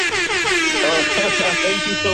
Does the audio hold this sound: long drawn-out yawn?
no